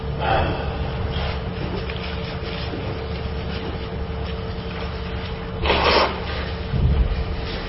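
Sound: person blowing their nose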